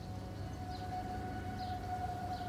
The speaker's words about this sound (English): He squints up at the sky. He can't see it yet, but the sound is unmistakable. A faint drone of a light aircraft.